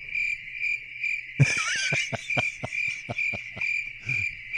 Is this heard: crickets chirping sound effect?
yes